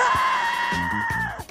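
A person lets out a loud, sustained scream lasting over a second, high and strained, with brief vocal breaks mixed in before it trails off abruptly.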